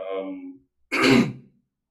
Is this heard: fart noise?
no